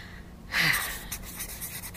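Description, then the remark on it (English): Dry scratching of a pencil being rubbed back and forth across a paper pad that had been written on, starting with a firm stroke and continuing as softer, steady shading strokes with no voices. “She was writing on a pad of paper. Pencil around here. Here we go.”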